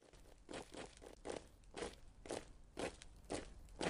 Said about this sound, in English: expecting to hear the hoofbeats of horses. The sound of a marching army,